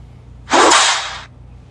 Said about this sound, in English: Oh, God, wait. Whip crack.